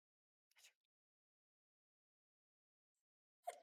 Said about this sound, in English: I'm gonna sneeze. Hold on.